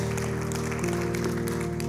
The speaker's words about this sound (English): I will just say, so my family and I have been at Valley Church, it's pretty much 10 years almost exactly. We started, 2014. Yeah, we can clap to that.